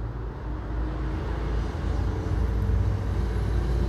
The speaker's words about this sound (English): So I'll just let these sirens pass. Keep talking. they're stopping at the bus station right next to me. That's interesting.